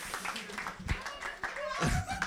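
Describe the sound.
An audience claps in a steady, scattered patter, with a few sharper claps standing out, while voices talk and murmur over the applause.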